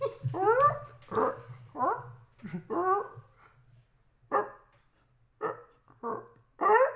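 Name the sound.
person imitating a dog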